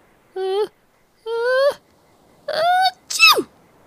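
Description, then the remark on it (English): A voice acts out a sneeze: three rising, drawn-out voiced gasps with pauses between, then a sharp, pitch-dropping burst for the sneeze itself, fairly loud. “Achoo!”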